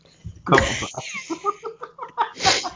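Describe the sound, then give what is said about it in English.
A loud, sudden sneeze bursts out, followed by a string of short, rhythmic laughing breaths and then another sharp, breathy burst at the end. “That was quite the sneeze.”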